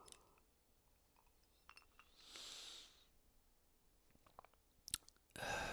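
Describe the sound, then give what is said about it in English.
A sip of Añejo tequila on ice from a glass, with a soft slurp followed by a few light clinks of ice against the glass, then a brief rush of breath. No one speaks. “I'm going to have a sip now.”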